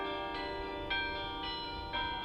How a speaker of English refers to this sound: She loves how the bells resound through the countryside or across an urban landscape. I like the idea of music going out and echoing.